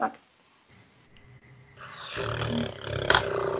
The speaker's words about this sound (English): I think it's Geralt's horse. Help me with the name.